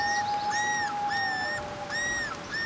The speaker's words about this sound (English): Shh! You hear that? The loons.